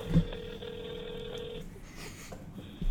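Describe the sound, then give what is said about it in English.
An outgoing phone ring tone plays over a speakerphone, a steady electronic tone lasting about a second and a half, followed by a pause of faint line noise. “We're going to do a phone call. Oh, baby. A little call-in for the podcast. It's on speaker.”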